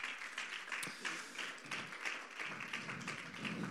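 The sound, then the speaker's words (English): A church audience gives a hand clap of praise to the Lord, a dense, steady burst of applause, many hands overlapping in a bright, crackling wash with a few sharper individual claps, sustained at moderate loudness throughout. “Let's go ahead and give a hand clap of praise to the Lord one more time.”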